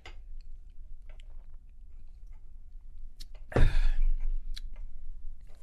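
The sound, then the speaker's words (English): Someone takes a quick sip of baloo Winter Beer, a dark seasonal beer poured from a bottle into a glass: a short wet slurp after a few soft clicks and mouth noises, with no talking. “I'm going to have a sip of it.”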